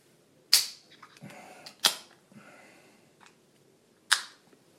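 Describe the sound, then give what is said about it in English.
A sharp pop as a bottle of West Coast IPA beer is opened, followed by soft fizzing and the hiss of the dark golden beer being poured, broken by two more crisp clinks. No one speaks. “Foams up a little on opening. Oh, it's nice and fizzy, so it pours a dark golden colour, what they call marmalade.”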